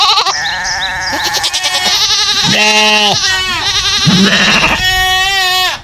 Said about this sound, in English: All the goats.